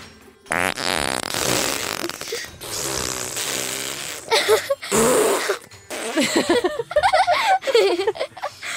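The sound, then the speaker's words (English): A fart sound effect plays from an Alexa smart speaker on request, a long, loud, buzzing raspberry lasting a few seconds, followed by bursts of giggling laughter. “I've never used it to make fart noises, but I must try.”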